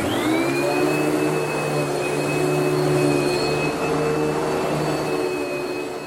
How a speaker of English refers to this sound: This is timed perfectly for the Huddersfield Contemporary Music Festival. That was actually the sound of a vacuum cleaner, so not entirely inappropriate.